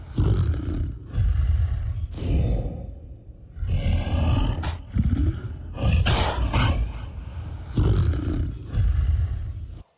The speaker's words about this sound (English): We had some lions roaring there. That was a gorilla. Oh, is that a gorilla? Yeah, that's a gorilla.